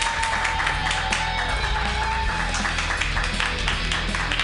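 An audience at a comedy show applauds steadily for a few seconds as a comedian is introduced, a dense, continuous wash of many hands clapping, with no speech over it.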